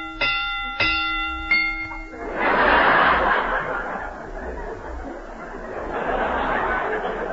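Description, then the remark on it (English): A few quick, bright bell strikes ring out in succession, rung to rate a mystery film at three and a half bells, then an audience bursts into sustained laughter and chuckling that carries on to the end. “This mystery gets 3.5 bells.”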